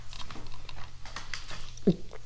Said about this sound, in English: I'll be hearing me swallowing.